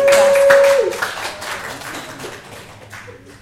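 Audience applause: a dense burst of many hands clapping, loudest at the start and gradually thinning out, with a brief steady tone sounding briefly underneath at the beginning.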